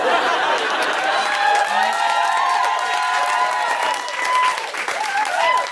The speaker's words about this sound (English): If you're not clapping, we can see you. Not clappers. Don't.